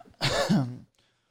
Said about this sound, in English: Perfect time. Okay. Perfect time to cough.